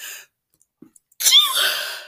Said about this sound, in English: Holy shit, I sneezed.